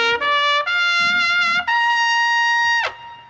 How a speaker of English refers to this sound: But on this show, we go big. Somebody says something, we crescendo, we bring in the the trumpets and we show Doug Benson the respect he deserves.